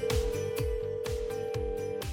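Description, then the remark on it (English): A steady, unbroken telephone ring tone as radio hosts call a woman on air hums for about two seconds over a pulsing, thumping music beat, fairly loud, with no one speaking. “we're going to call her up.”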